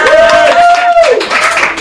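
Dense, steady crowd applause fills the moment, with a single rising-then-falling whoop or cheer riding on top before the clapping carries on at the same loud level.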